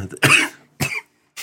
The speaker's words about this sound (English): Nothing fucking better than getting a cough in fucking stereo, dude.